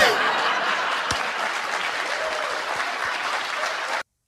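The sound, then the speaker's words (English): A crowd applauds steadily with loud, dense clapping, mixed with scattered laughter and chuckles, holding at an even level for about four seconds before cutting off abruptly. “And the response, you see the crowd response.”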